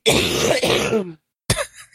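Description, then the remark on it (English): A person clears their throat roughly and coughs for about a second, then after a brief silence lets out one more sharp, loud cough. “she needs a cough button over there.”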